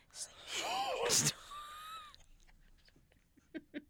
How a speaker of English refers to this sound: I'm stifling my yawns as we speak.